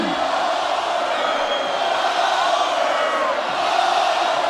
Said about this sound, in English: Oh, they were cheering them a minute ago. What hypocrites these losers are. Listen to him chant Goldberg.